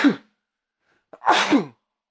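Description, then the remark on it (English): A loud sneeze with a sharp inhaled catch before the burst, preceded by the tail end of another brief sneeze-like exhale; no one is talking. “I'm gonna sneeze.”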